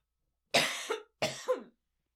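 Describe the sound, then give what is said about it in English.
Two hoarse coughs in quick succession, each a sharp burst trailing into a rougher tail, with silence before, between and after. “It reminds me, I have to cough.”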